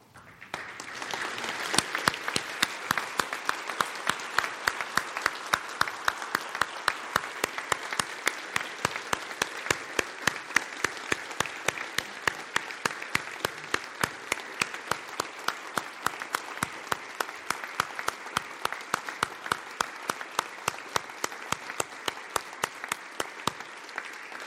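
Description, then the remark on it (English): An audience stands and applauds the service of veterans of the armed forces, steadily for about twenty-five seconds, the claps falling into a fairly even, almost rhythmic beat that stays loud throughout with no talking over it. “So if you're a veteran with us today and you've served in any capacity in our armed forces at any way at all, we'd like for you to remain seated while we stand and applaud your service and thank you for that.”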